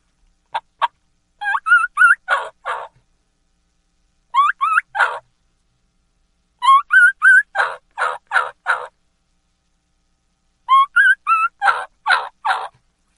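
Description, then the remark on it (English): A jake whistle turkey call, a lost young gobbler's key-key, made by a caller: four bursts of thin, rising whistled notes, each running into a string of coarser yelps, loud with short pauses. “a Jake whistle, key-key and call of a lost young gobbler, which you hear a lot in the woods”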